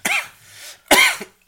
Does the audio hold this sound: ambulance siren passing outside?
no